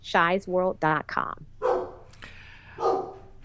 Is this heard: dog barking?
yes